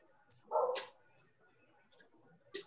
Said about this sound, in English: And shout out to my dog, Junior, in the background. That's one thing about Zooming from home. You can't always get rid of all the background noise.